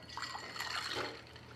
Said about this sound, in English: We'll add some soda water.